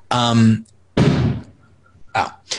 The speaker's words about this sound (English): Sorry, those are fireworks.